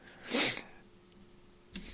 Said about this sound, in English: I say as I keep sniffling. I swear I don't do drugs. I'm just a little sniffly.